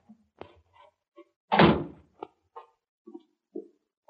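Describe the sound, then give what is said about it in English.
A heavy cellar door at the back of a house thuds loudly once, a broad booming knock with a short rumble, surrounded by softer scattered clicks and taps of handling and footsteps. No one speaks. “That's the cellar door.”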